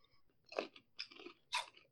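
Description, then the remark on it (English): Crunching of Crunch and Munch caramel popcorn, a version without nuts, being chewed, with three distinct loud, crisp crunch bursts spaced about half a second apart, quieter munching between them and no talking. “But Crunch and Munch, to me, has always been superior to Cracker Jack.”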